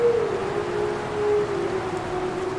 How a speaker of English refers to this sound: We leave you this week deep in a dark conifer forest in the company of wolves. A lone wolf calls out among the pines, and a large pack of timber wolves and their pups chime in.